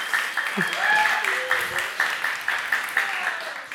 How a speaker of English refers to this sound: Nice. Good. That was excellent. And for some of you that are still clapping